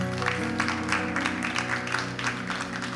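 An audience applauds steadily for a few seconds, a dense wash of clapping with faint rhythmic swells, while sustained musical tones hum underneath.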